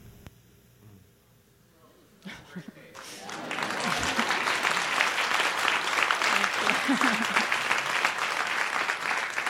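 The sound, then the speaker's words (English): After a couple of seconds of quiet murmuring, an audience breaks into sustained applause, a dense, steady wash of many hands clapping that swells and holds loudly to the end. “It's nice when one's high school turmoil can be clapped at later.”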